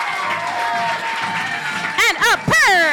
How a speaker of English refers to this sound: Everyone, please give a wild round of applause